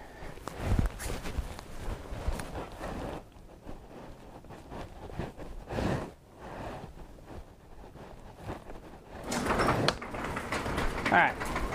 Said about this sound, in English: Garage door.